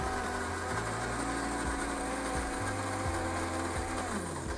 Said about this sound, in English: My coffee grinder is grinding me some great espresso bean. No, French roast. It's not espresso. French roast Starbucks coffee.